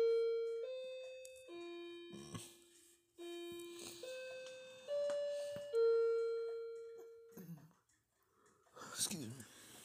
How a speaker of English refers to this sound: It's funny, the clock's going off.